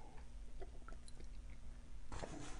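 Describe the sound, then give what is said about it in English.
Wet mouth sounds of someone sipping green tea, with small clicks and swallows, then a louder airy slurp near the end. No talking. “Let's pause. Let's have a little sip of green tea.”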